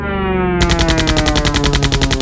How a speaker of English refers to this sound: German planes roamed the skies, machine gunning and bombing everyone.